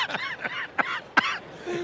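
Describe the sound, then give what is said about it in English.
A person coughs several times in a short, ragged fit, with a couple of sharp bursts and raspy, wheezy breaths in between. “you've been nursing a cough, buddy.”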